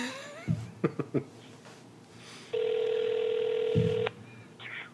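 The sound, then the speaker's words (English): A few quick taps of a phone being dialed to call a listener, then a single steady electronic ringing tone that holds for about a second and a half before cutting off; clear, with no talking. “No, it's your phone.”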